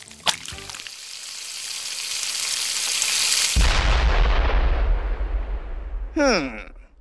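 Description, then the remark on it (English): Loud frying sizzle of fizzy pancake batter on a griddle hisses steadily, then a sudden deep boom erupts partway through as the pancake explodes, and keeps rumbling and crackling under the sizzle. A brief voice cuts in near the end. “We can't eat it if it's exploding on the griddle.”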